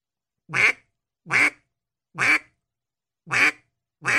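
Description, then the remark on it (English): Five short, raspy quacks blown on a duck call as a basic quack, evenly spaced about a second apart. Each note is clear and fairly loud, with silence between them and no talking. “the end of it is one that you hear people talk about a fair amount, like how you're supposed to end a basic quack. Let's hear one done correctly.”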